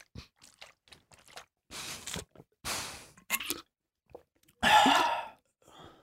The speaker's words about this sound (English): Oh, I like the added plop. That's the water sliding back down.